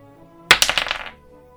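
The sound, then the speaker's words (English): Dice for a death saving roll in a game clatter across a table: a sharp first hit followed by a quick run of tumbling clicks that slow and fade within about half a second, with no voices. “Spiggs will roll death saving dice.”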